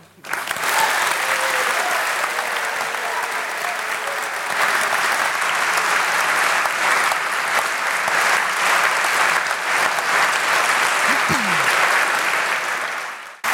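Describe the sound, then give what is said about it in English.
A sustained wave of audience applause at a debate on political leadership, dense and steady clapping at a loud, even level for over ten seconds, with a brief vocal cry briefly rising through it near the end before it fades. “So after that round of applause, I'm not going to try and defend this government or Partygate.”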